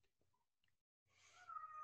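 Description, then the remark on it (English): A cat lets out one drawn-out, whiny meow in the second half, moderately loud, after a near-silent stretch with a few faint small noises. No one speaks. “My cat is meowing.”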